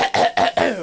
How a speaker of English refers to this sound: Yeah, clear your throat in the microphone. Good job, Chief.